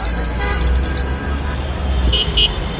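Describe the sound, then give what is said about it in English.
Dense street traffic of rickshaws and cars in Dhaka, Bangladesh, with a steady low rumble of engines, a couple of short horn toots and faint bell-like chimes over busy, continuous city noise. “You hear rickshaws and cars.”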